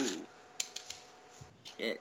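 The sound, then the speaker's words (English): Headphones being taken off: a few quick plastic clicks and handling rustles in a short burst, with brief bits of voice-like sound before and after. “Ooh, I'm gonna take mine off right now. All right, click.”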